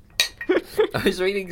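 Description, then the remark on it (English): Whiskey glasses clink together once in a bright toast, and voices murmur and talk right afterward. “Cheers.”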